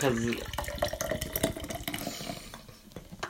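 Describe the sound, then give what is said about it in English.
A pink drink that looks like pink lemonade pours steadily into a glass for a few seconds, a bubbling splash that tapers off toward the end, with brief voices mixed in near the start. “Why do you pour so much?”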